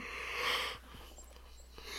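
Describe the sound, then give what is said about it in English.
A breathy sleepy yawn swells and fades over under a second, followed by quiet background with a few faint soft ticks. “Excuse me, listeners, for the sleepy yawns.”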